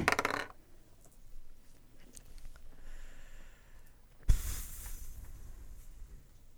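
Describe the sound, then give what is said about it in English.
Dice clatter across a hard tabletop, rolled for a dexterity saving throw: a brief rattle at the start, then a louder, sharper tumble later that quickly settles. Quiet rustling fills the gap, and no one speaks. “Roll a dexterity saving throw.”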